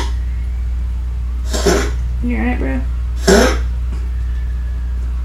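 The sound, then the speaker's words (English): Two sharp, harsh bursts of gagging and coughing from Bonkers with a hairball, about two seconds apart, with a man's short spoken question between them over a steady low hum. “He's it makes really him gag.”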